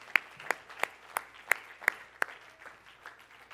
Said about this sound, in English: Would you just clap your hands to the Lord tonight in Jesus' name?